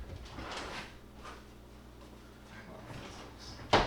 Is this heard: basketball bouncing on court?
no